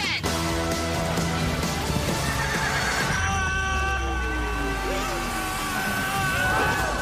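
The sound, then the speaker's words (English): A horse whinnies loudly and at length, its neigh rising and sliding over a busy, continuous backdrop with clopping hooves and other layered sound, full throughout. “Where's that damn horse at?”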